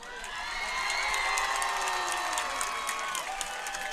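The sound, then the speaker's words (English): A cheer squad cheers at a football game, many voices shouting and yelling together in a steady, sustained roar, with scattered claps and whoops rising over the crowd noise. “Down there for your cheer squad.”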